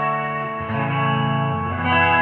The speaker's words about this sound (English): Capo to the second fret, I think. I'm trying to match your chorusy sound with my echo here.